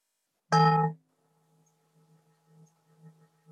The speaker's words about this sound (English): I'm sorry if the bell sounds a bit clunky. I put on original sound for Zoom, but it still doesn't do it very well. So, but you know what the bell sounds like.